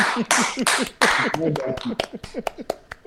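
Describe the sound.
A loud, sharp hand clap rings out, followed by a run of quicker, lighter claps, with people talking and reacting underneath.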